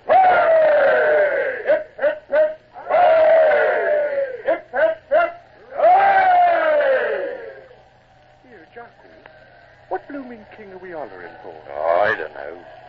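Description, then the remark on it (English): A group of voices bellows three long, loud cheers of "hip, hip" for King Louis XVIII of France in a row, separated by brief scattered shouts, then the noise settles into quieter chatter and murmuring. “And three cheers for the king. Now, all together now.”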